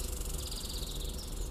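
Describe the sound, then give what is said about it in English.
A steady night chorus of tree frogs chirping in fast, pulsing trills, high-pitched and continuous, with a low background rumble and no voices. “Did you hear that? Tree frogs?”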